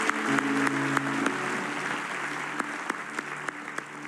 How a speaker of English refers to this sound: Let's clap our hands in agreement on this, can we?